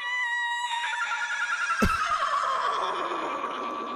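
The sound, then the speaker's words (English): A voice imitates a horse whinny in a long, wavering, high-pitched call that trembles and slides downward, interrupted by a brief sharp knock partway through. No one speaks. “Jeez, I don't know if that was supposed to be a horse.”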